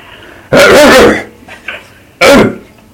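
Two loud, harsh coughs, the first longer and rasping, the second a short sharp burst after a brief pause, with faint background noise between.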